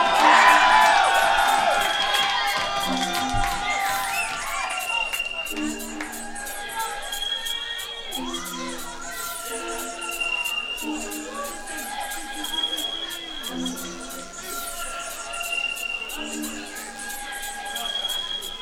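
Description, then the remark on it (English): A crowd cheers for an artist, erupting in loud cheering and high whoops for the first few seconds, then settling into a steadier, noisy roar of mixed voices that carries on to the end. “Can I hear some noise for …?”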